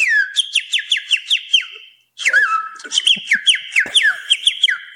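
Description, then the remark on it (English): A person imitates a cricket chirp with their mouth, held close to the mic: rapid, high-pitched whistled trills repeated in a steady rhythm, pausing briefly before resuming, fairly loud with no talking. “He does that with his mouth. I actually nominate that to take over the cricket every time.”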